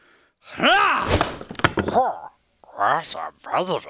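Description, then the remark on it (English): A sword hacks into the trunk of a massive, thick-barked tree with a few sharp, heavy wooden thunks, surrounded by loud, strained vocal grunts and swooping cries that rise and fall in pitch. “I know that typical tool for tree cutting is axe, not sword.”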